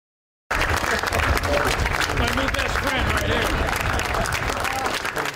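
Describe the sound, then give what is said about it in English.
A large crowd applauds steadily at the Pentagon as outgoing Joint Chiefs of Staff chairman General Mark Milley departs in the farewell tradition known as clap out: a dense, sustained roar of many hands clapping at full volume, with a murmur of voices and cheers mixed underneath. “departing the Pentagon to a round of applause.”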